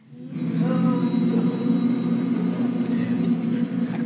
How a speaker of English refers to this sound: If you think the pro side won tonight. What's going on? So. Hum shenanigans. If you think the pro side won, then I can have a hum for them.